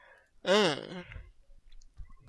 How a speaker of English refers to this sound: That was a robotic yawn. Oh, that was probably because you were accepting the file, yes.